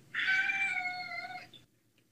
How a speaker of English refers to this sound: Stop messing with a cat. Stop.